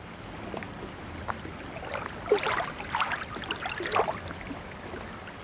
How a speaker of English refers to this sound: But for now, enjoy this generic sample of lapping water sounds.